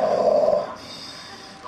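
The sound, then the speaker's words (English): A crowd of voices, an audience at Disneyland, imitates snoring together on a storyteller's cue: one loud, rough, nasal snore lasting about half a second, then trailing off into a softer breathy hiss. “Put your hands like this, going this, and snore.”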